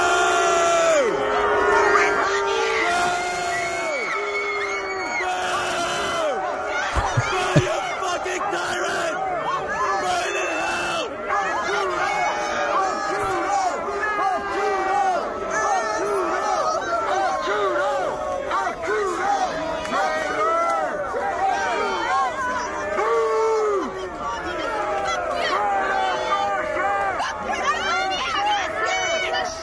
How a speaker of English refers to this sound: but here's a little bit more from, I'm not sure where this is, but people are yelling at him.